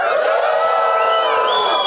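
An audience yells together in reply to a question, a loud, sustained roar of many overlapping voices, steady for about two seconds with a few higher shouts rising above the mass.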